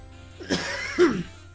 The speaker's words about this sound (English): And remember, guys, it's unprofessional to cough on your fucking podcast. The reason I cough on this podcast is to show you guys what not to do